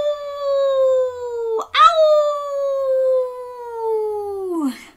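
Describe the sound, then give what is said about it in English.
A single long, mournful wolf howl, held steady for several seconds with a brief break and a quick rising yelp partway through, then sliding down in pitch as it fades out. “Can you go, can you howl like a wolf?”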